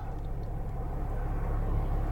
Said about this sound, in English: Boy, a lot of traffic suddenly.